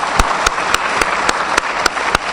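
An audience applauds the preachers steadily, a dense wash of clapping with sharp, evenly spaced claps cutting through about three times a second, loud and with no voices.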